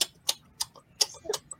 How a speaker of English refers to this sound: take it easy on whatever chewing gum he is murdering right now. I had it muted for a long time, man. He got all the flavor out there.